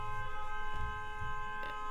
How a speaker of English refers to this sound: No, he doesn't. But every time we mention him, he honks that same horn.